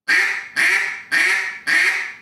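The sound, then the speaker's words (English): Four loud, drawn-out duck quacks blown slowly on a duck call, evenly spaced about half a second apart in a slow, steady rhythm, with no talking. “Well, right there, if I slow my quack down.”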